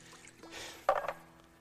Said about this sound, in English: This isn't going the way I planned today, so let me just kind of shake this up a little bit. I know you're not supposed to shake soda, but it's not working, you know? Diet Coke.